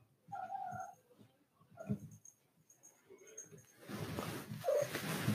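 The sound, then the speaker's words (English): A dog having an anxiety attack gives a few short, high, whiny whimpers while carrying a comfort toy in its mouth, followed by quieter snuffling and a burst of soft rustling as it tries to hide under blankets. “And, so, yeah, now she carries that around, like, when she's having an anxiety attack, she carries it with her to calm her down, like, around in her mouth, and she kind of, like, whimpers, like, I think you could hear her.”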